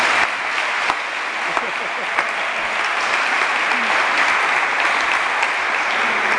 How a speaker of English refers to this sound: Please, ladies and gentlemen, a round of applause for welcoming our Lieutenant Governor, Becky Skillman.